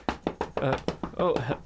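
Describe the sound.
A few sharp knocks on the door of a house on January 2nd come in a quick, uneven series, while someone speaks over and between them.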